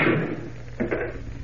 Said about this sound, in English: Striking the statue a terrific blow with the hammer, Kent shatters it into 1,000 jagged fragments as Jimmy looks on wide-eyed.